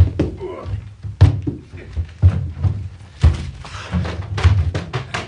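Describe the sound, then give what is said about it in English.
A locked door is forced open with a series of heavy, irregular thuds and bangs against it. The blows are loud, with rattling and creaking between them. “It's locked. Here, let me, sir.”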